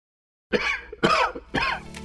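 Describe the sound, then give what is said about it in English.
A person coughs three times in quick succession, each a harsh, throaty burst about half a second apart, fairly loud with no talking. “Cold and cough season is here.”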